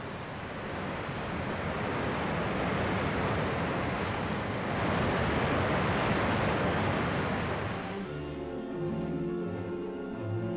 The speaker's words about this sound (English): All of man's ingenuity cannot stop this now. The flood must run its course, leaving in its wake miles of ruin.